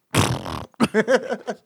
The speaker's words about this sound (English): Did you hear a fart sound?